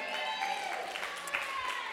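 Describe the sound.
An audience applauds with a steady wash of clapping, mixed with a murmur of voices and a few cheers, holding an even level throughout.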